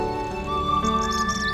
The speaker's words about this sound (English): What nature sounds do you hear? I hear birds.